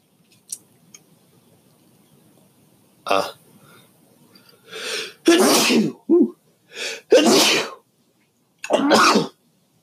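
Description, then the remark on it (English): A run of several loud sneezes in quick succession, each a sharp explosive burst, with a few softer breathy catches and sniffs between them and no talking. “Those sneezes out of there.”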